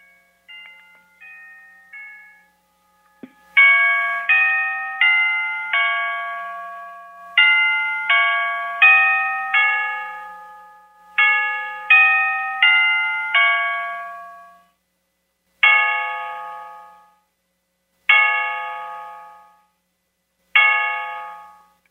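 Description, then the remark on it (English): A Black Forest cuckoo clock in a home hallway chimes the Westminster melody in clear, ringing four-note phrases, then strikes the hour with three slow, evenly spaced bongs that ring out and fade. Fairly loud, with no talking. “It does what you just heard, the Westminster on the top of each hour and strikes the hour, but it also will cuckoo.”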